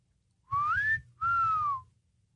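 Two clear whistled notes imitating a mourning dove call, the first sliding upward and the second held and gently falling, over a low rumbling background.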